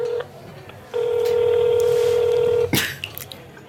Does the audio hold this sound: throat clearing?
no